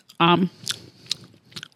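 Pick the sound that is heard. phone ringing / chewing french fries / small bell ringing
chewing french fries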